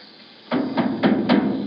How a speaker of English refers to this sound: Well, here we are. I guess we knock? Sure.